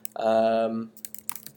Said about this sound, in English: And it's for, and I meant to have this pulled up so that you didn't have to listen to me tap, tap, tap away on my keyboard, but you will now.